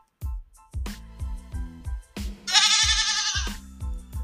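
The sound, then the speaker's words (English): A loud, bleating goat cry sound effect lasting about a second, played for a "GOAT of the week" shout-out, rings out midway through a steady, thumping beat of deep drum hits, with brief melodic stabs before it. “So shout out to you, Miss Branch, Kennedy Branch, and you are the GOAT of the week.”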